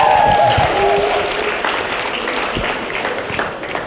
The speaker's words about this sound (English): They tell y'all, man, make some noise for Mr. …, and people go... That was the applause he deserved, but that's not the point, brother.